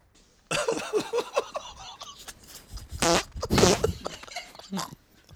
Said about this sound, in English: Okay, so that was number one. Here's mystery fart number two.